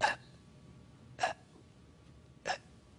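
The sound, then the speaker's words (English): Three sharp, brief gasps for air, spaced roughly a second apart, each a quick, harsh intake of breath with near silence in between and no talking, showing how one fights for air in hell. “You have to fight and gasp for even the tiniest bit of air. And this is how you breathe in hell.”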